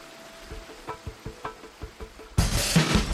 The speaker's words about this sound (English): Now I'm coming up along the Eno. This trail runs along the Eno River. I'm gonna go up and get the sound of the water.